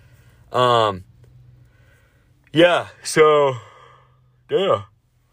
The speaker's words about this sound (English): I think I yawn more during these episodes because I fucking talk so fast and so much.